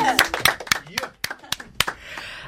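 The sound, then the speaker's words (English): A short burst of applause in a studio for the guest band: a handful of sharp, uneven claps from a few people over a couple of seconds, with voices talking and calling out underneath. “But for now, yeah, big round of applause for ….”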